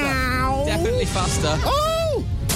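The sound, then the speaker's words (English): A cat meows twice, loud: a long drawn-out meow, then a shorter rising-and-falling one, over steady background noise. “Meow. Oh, it's meow.”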